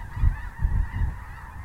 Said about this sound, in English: The prairie grass of North Dakota can look like it's waving hello, but even the geese just fly right over.